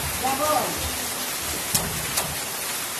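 Steady rain of big drops drums on the corrugated iron roofs of huts and houses in Guarchia, a village in northern El Salvador, a dense, even hiss broken by two sharper, louder drops striking the metal.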